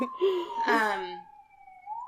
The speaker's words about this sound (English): The siren's happening again, so I must be hitting it. Ringing true. There you go. Stop editing out the sirens now.